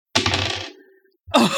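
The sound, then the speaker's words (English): Dice clatter and rattle across a hard surface in a bright, scattered burst that trails off as a player rolls for a lore library check in a tabletop game, then after a short pause a second loud clatter of tumbling dice begins. “I'd like to roll lore library to see if I can figure out more info about the spell.”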